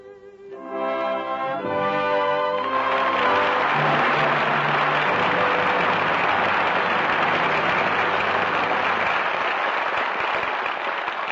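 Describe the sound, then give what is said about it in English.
A closing musical chord rings for a couple of seconds, then gives way to loud, steady audience applause that holds evenly to the end, a dense wash of clapping with no voices. The applause calls back the five stars of the evening's performance: Walter Pidgeon, Donald Crisp, Maureen O'Hara, Roddy McDowell and Sarah Allgood. “Applause calls back five stars, who gave five brilliant performances tonight.”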